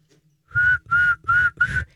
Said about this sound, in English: Not many people whistle anymore. And some people have weak whistles. And he needed to whistle. Apparently, a wrangler needs to whistle.